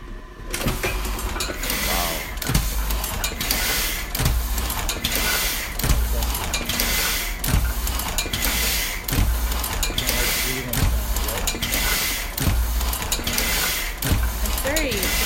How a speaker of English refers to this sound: So I'm just going to keep this going. And this is a letterpress. Wow. Okay. Letterpress printer.